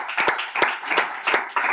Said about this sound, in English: Though I believe we live in the greatest nation on the planet Earth. Come on, give a hand clap for America.